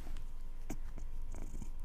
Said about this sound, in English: We have a purr baby right here.